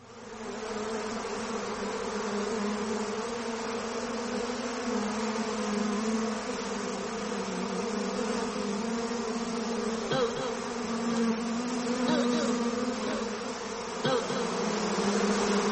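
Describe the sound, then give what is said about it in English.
A dense, continuous drone of many bees buzzing fills the whole recording at a steady, fairly loud level, with small flickers as individual insects pass by. No one speaks. “Every allergic reaction to them bees?”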